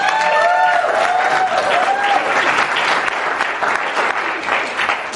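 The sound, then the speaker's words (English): An audience bursts into loud, sustained clapping, a dense crackle of many hands with a few whistles rising and falling early on, steady throughout. “But, you know, if he's no good, just amen, really, and clap a lot.”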